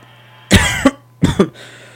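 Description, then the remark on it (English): Two loud, harsh coughs very close to the microphone, the first starting about half a second in and the second about 1.2 seconds in, with a low steady hum underneath and no talking. “I coughed right into the mic.”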